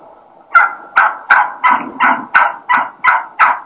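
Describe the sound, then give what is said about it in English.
A Gould's wild turkey hen in Arizona, recorded during a hunt while a hunter calls to her, yelps aggressively: about nine loud, sharp, evenly spaced yelps in quick succession, with no talking. “I think this is just classic, you know, kind of excited, kind of aggressive hen yelping at its best.”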